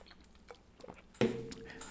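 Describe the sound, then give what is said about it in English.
Someone takes a sip of a drink during a break: a few soft wet mouth clicks, then a louder slurping draw that trails into a quiet breathy exhale. No one speaks. “Sip, break.”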